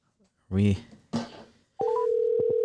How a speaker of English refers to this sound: We are ringing. We are rolling. We are ringing.